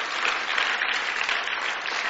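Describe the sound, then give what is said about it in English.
Steady applause from a large audience clapping for Jesus in the house of the Lord, a dense, continuous patter of many hands clapping at an even, sustained level with no voices standing out. “Come on, let's clap for Jesus. Give Him praise.”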